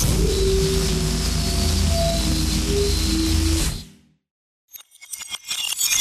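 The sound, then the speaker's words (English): The shatter of a breaking mug played in reverse with a deep bass magic hum beneath it, swelling loudly and cutting off abruptly, then a short silence before scattered glassy crackles rise again. “I add Liam's bass magic noise and lay it under the sound of the glass smashing, but now in reverse”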